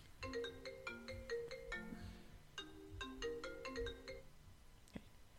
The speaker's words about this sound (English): Sorry about the ringing.